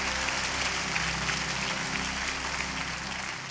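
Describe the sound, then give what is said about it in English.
An audience at a church service gives God a round of applause, a steady dense wash of many hands clapping at an even loudness for several seconds, with a low hum running underneath. “Come on, can we give God one more round of applause?”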